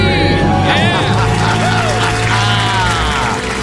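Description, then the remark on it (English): A large church audience screams and cheers in celebration of being debt free, a loud, continuous wall of overlapping voices with many rising and falling shrieks, sustained for the whole few seconds. “A church-wide debt-free scream.”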